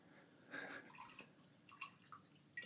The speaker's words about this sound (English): And would you like a little more mix since I just poured you 4 ounces of vodka in your glass?